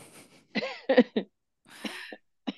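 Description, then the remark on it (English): A fairly loud series of coughs in irregular bursts, a couple of harsh hacks followed by a raspier, throat-clearing cough and a short final one, with no talking. “Sorry for my mesh cough too.”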